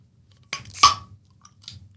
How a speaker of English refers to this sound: if you don't have a beer opener, you can actually use Fred's hot sauce to open the beer. Let me show you how. See, it's multifunctional, folks.